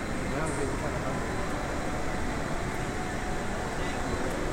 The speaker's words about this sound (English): How is it that the vacuum downstairs is louder than our voices right here, upstairs? That's pretty insane.